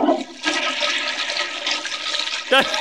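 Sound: toilet flushing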